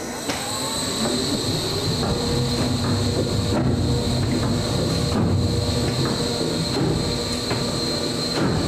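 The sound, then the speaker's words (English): A chocolate conch machine, which moves the liquid chocolate up in a wave pattern that cascades back on itself, churns and splashes in a steady, loud mechanical rumble, with a thin high whine running over the sloshing throughout and no voices. “But this has a fun splashing noise, which I kind of love.”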